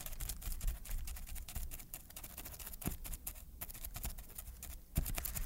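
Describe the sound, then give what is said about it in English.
Pencils drum rapidly and lightly on a hard surface without a sandbox, a dense patter of clicks imitating the skittering steps of a crab walking on a beach, continuing throughout with no talking. “He tried to recreate the effect without the sandbox for us.”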